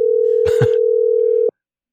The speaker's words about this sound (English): I'm calling on WhatsApp, so I don't know. I guess they'll just keep ringing forever. I'll give it a couple more rings. Yeah, it does ring a lot.